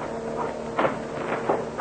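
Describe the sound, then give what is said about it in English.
Two dull knocks at a door, spaced under a second apart over a steady low hum, with no one speaking. “Wait a second. Somebody's at the door.”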